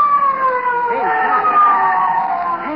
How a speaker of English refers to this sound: Hey, a police car. It's coming here.